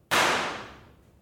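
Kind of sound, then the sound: sound effect, single gunshot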